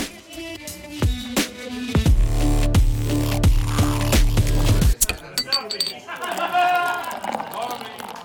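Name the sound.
glasses clinking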